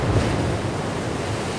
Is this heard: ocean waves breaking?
yes